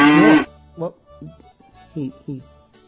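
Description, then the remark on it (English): A loud, brief, bright cow moo sound effect, mooing twice, sounds right at the start, followed by quieter bursts of someone talking. “He mooed twice. I didn't hit the button twice.”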